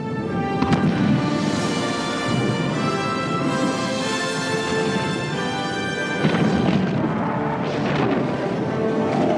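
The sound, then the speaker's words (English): A massive cinematic explosion of Starkiller Base from Star Wars roars continuously, a dense, loud rumble with fresh surging bursts early on and again later, layered with sustained tonal swells. No one speaks. “A truly unique explosion. Not only does Starkiller explode, it kind of shrinks back into itself and turns into a star for a little bit.”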